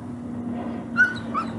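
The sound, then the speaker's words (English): A dog whines in two short, high-pitched bursts about half a second apart, over a steady low background hum. “Now we have a dog whining, an airplane flying, baseball bat hitting.”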